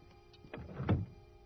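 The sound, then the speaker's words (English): A door is pushed shut: a brief scraping swing followed by a solid, low thud as it closes, with no one speaking. “Close the door.”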